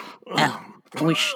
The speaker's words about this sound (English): certainly, you're pretending that's a cough. Yeah, that's a pretend cough.